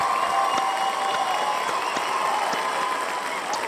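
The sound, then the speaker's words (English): A steady burst of crowd applause greeting wrestlers Alba Fyre and Isla Dawn, dense clapping with scattered sharper claps and a faint cheer, sustained at even loudness throughout with no voices on top. “Let's get a round of applause.”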